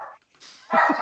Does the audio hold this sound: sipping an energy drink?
no